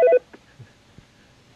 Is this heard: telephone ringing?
yes